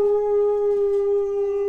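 Benny, a pet, howls in one long, sustained, fairly loud note that holds a steady pitch for the whole moment, with no talking over it.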